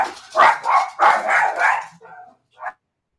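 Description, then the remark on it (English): Several dogs bark excitedly as someone arrives home, in a rapid, overlapping burst, loud, then the barking trails off into a few softer yips and one last short bark. “Of course, my wife has to get home right at the time the show starts, so the dogs go shit fucking nuts.”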